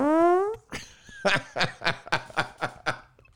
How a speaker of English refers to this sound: Oh, farts are funny.